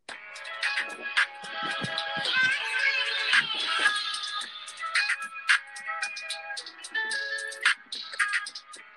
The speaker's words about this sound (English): let's give him a chance. This is new single. It's called …. All right. Let's hear it.